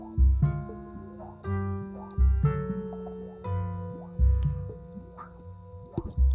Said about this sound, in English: It's got those drip sounds. I'll turn it up just a little bit before it kicks in.